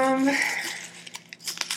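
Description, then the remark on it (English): Paper trash crumples and crinkles as it is cleared away, in a series of sharp, irregular crackles, following a brief voiced sound at the start. “Let's get all this trash out of here.”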